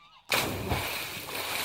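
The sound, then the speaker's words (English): After a brief quiet moment, a sudden loud splash erupts as something falls into the sea, followed by a sustained rush of churning, sloshing water. “The turkeys escaped, and the fox stumbled into the sea.”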